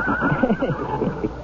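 A deep chestnut horse named Malachi, with a great black mane, standing 17 hands at the withers and weighing 1,200 pounds, neighs in greeting, a full, quavering whinny that shakes and wavers for about a second and a half without a break. No voices.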